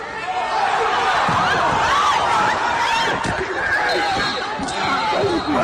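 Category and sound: crowd, crowd noise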